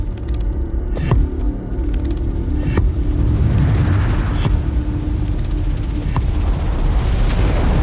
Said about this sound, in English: So there's this idea that perhaps in the same way that whales call to each other, sandworms have a way of communicating, but it's this deep thumping sound, and that's why they respond to the thumpers.